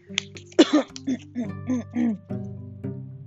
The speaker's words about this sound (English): I'm sorry, I don't know where this cough came from.